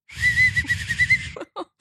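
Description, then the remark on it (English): A feeble, breathy attempt at a whistle: mostly rushing air with a thin, wavering tone for about a second, followed by a couple of short vocal sounds. “Hello, that was a pathetic whistle.”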